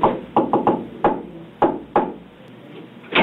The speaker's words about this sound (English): Were you knocking? Yes, sir.